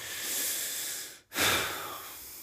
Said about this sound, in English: Okay, so maybe we should do a little breathing exercise together. If you guys are driving, go ahead and close your eyes. We're going to do some breathing exercises here.